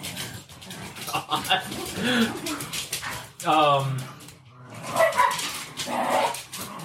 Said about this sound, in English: Somebody get those dogs out of there.